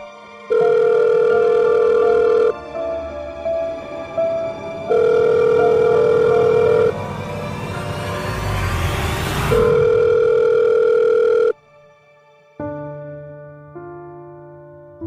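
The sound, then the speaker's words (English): Pepper's phone is used to dial Happy's contact: a loud, steady electronic ringing tone sounds in three long bursts separated by pauses. A swelling whoosh passes midway, and a few different tones follow at the end. No one speaks. “He thumbs through her contacts, ultimately clicking on Happy's name, and dials.”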